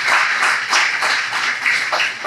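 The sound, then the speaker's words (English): A crowd applauds Urban Roots steadily, dense overlapping claps forming a loud, continuous wash of sound that holds for a couple of seconds with slight surges. “Give Urban Roots a round of applause.”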